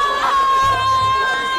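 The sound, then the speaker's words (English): A loud, dense roar from thousands of protesters in Moscow demonstrating over local elections, with overlapping voices and shouts, a steady wash of chatter and a sustained high whistle-like tone running through it. “So suddenly, thousands of people converged in Moscow.”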